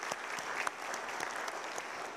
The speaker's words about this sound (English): Can we give the worship team another round of applause? That's such a good song. They do such a good job.